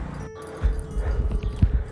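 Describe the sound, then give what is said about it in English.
A pressure washer of a water jet cleaning service cleaning a house runs continuously, its motor holding a steady droning hum beneath a broad rushing hiss, with irregular low thumps and knocks scattered throughout. No one speaks. “It was a, you know, a water jet, pressure jet cleaning service that the house was having done.”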